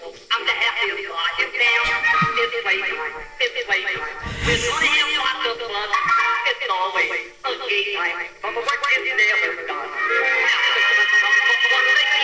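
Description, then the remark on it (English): A loud, continuous theme song for Chucko, a Los Angeles legend, plays throughout, with voices singing over dense instrumental backing and a brief horse-like whinny sound effect bursting in partway through. “And here is his theme song.”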